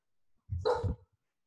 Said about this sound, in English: sorry, my dog is going off.